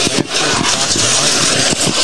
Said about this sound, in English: So then he takes off again, and this is where he ends up smashing into the car wash.